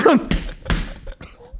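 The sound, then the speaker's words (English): Two loud, sharp smacks of a greasy fake rubber butt being slammed down repeatedly to break it down, about half a second apart, followed by softer shuffling and a brief vocal sound at the start. “Just keep slamming it until it fucking breaks down.”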